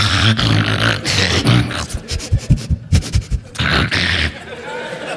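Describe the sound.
Someone does a quick impersonation of their dog, Blossom: rough growly vocal bursts, then a quick run of rhythmic huffing pants, ending in another loud gravelly snarl.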